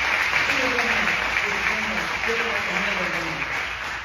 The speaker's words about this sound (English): You guys are quiet this morning, so guess what I'm going to do to you? Can we give God a hand clap of praise and see what it sounds like?